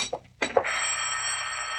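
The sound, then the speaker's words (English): A telephone bell rings in a steady, continuous, high-pitched trill that carries on to the end, preceded by two brief knocking sounds. No one speaks. “I'm not going to answer it.”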